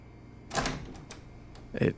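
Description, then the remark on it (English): A person reaches for a door and tries its handle: a clunky metallic rattle, a few small clicks, then another firm clack near the end, all fairly loud. “He reaches for the door and checks the handle.”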